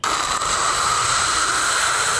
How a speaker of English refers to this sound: What does it do? It gives you some noise so that your brain can kind of check out, and it feels like it's on autopilot, so to speak. You've never heard white noise? I probably have. I mean, I've heard of it, but what does it sound like?